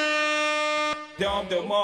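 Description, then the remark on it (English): A loud air horn blares one steady, brassy blast for about a second, then cuts off abruptly; a voice starts talking right after. “Here, I'll play the horn for you.”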